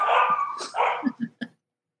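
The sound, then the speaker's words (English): Dogs in a kennel whine and whimper in a drawn-out, wavering cry, then let out three short, sharp barks in quick succession before everything falls quiet. “Bryson's in there fighting with the dogs.”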